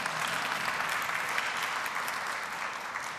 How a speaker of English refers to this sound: If you don't know, yeah, you can clap your hands, yeah.